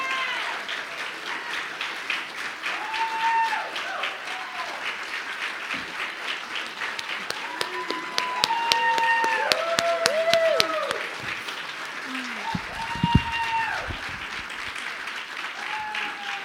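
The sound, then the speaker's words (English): A crowd applauds graduates as they make their way to the stage, steadily for about sixteen seconds, a dense wash of clapping punctuated by rising and falling whoops and cheers from scattered voices. “So give them a round of applause if our graduates make their way to the stage.”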